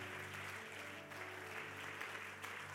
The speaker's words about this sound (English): In Jesus' name, would you clap your hands to the Lord?